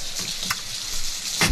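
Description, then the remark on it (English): Steady, dense hiss of heavy rain in a storm, a continuous crackling wash with a few sharper splats and a brief louder burst near the end. No voices. “Yeah, it is raining pretty hard.”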